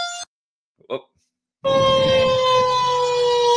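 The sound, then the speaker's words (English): After a brief quiet stretch, loud evacuation warning sirens in Borger during a large wildfire suddenly blare in, recorded at a house there, holding a steady, sustained wailing tone over a rumbling background of noise until the end. “That's the sirens telling them it's time to get out.”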